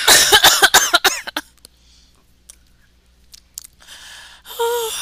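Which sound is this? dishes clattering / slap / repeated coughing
repeated coughing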